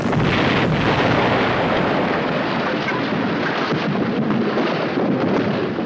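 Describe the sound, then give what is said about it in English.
A loud, continuous roar of massive explosions, a dense rumbling blast that sustains for several seconds with no distinct pauses and no voices. “Following a dramatic slow-motion sequence in the soft light of their massive explosions”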